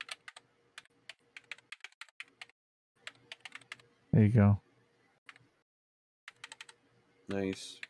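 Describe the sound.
Quick bursts of clicky computer keyboard typing as a message is typed into a chat, running in short irregular runs with pauses, interrupted twice by a brief spoken phrase from a man.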